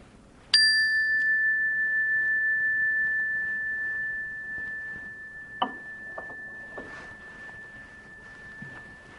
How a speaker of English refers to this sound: Then opening your eyes to the sound of the bell.